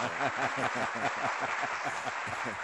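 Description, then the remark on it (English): A steady round of applause with crowd cheering mixed in, dense and fairly loud throughout without letting up, with voices blending into the clapping. “let me give him a roaring round of applause here, man.”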